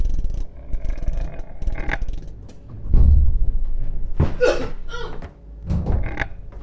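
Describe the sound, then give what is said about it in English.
A heavy metal airlock door is cranked open with a deep low thud, strained creaks and mechanical groaning in a few loud bursts, with no voices. “I'm opening the door.”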